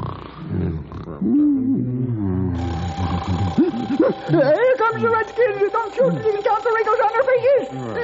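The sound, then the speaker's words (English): An old burglar alarm starts ringing a few seconds in, a loud, steady metallic clamor that keeps going while people talk excitedly over it. “Why didn't you tell me it was just this old burglar alarm”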